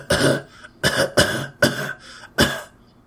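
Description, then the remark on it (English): A voice imitates a French dog's bark with a run of four or five harsh, raspy coughs in quick succession, loud, with brief pauses between bursts. “Yeah, they cough instead of barking because they smoke those damn cigarettes.”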